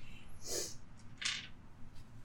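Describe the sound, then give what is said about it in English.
Dice rattle and clatter across a table in two short, bright bursts about a second apart, fairly quiet over a low background hum, with no one speaking; the roll comes up a 1 and a 10. “Yeah, I rolled a 1 and a 10.”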